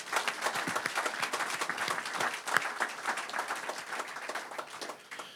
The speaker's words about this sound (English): So I'd ask you maybe to give them a good round of applause.